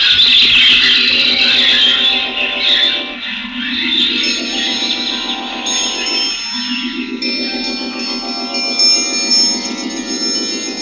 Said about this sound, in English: Quite a phenomenon. Hundreds of thousands of birds suddenly appearing in the forum at the precise instant when Caesar was proclaiming himself a god. And they hovered and they shrieked and they beat their wings.